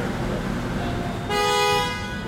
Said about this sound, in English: Car honking.